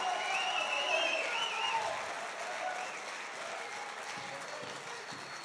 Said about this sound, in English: If you believe that with me and you know that's the answer for America again, let God hear that you're interested tonight. Clap your hands and give God a mighty, mighty shout.